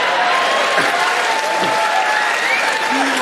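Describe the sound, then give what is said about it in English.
A round of applause from a crowd: dense, steady clapping that holds at an even, loud level for about three seconds, with faint voices mixed into the noise. “Round of applause for pedo teachers, yeah.”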